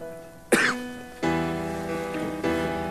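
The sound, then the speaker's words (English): A man lets out a sharp cough right after taking a sip of tea, followed by two swelling sustained musical chords with no speech. “And he takes a sip and starts coughing right away.”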